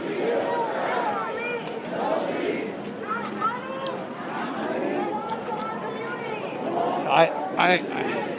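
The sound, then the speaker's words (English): Dense, overlapping crowd chatter heard while walking through the crowd, many voices talking at once, a steady loud murmur throughout, plus a couple of sharper bursts near the end. “This is, I'm walking a little bit through the crowd.”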